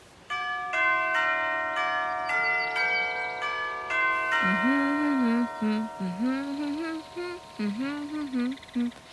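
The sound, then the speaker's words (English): The doorbell of a cottage that looks abandoned chimes out a short, catchy melody of several ringing notes that linger and overlap, with a person starting to talk as the tones fade. “Try the doorbell, Evie.”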